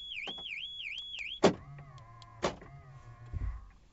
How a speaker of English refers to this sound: That's my car making that noise. I'm in the car recording. Place key in backup area. I don't even know what that means.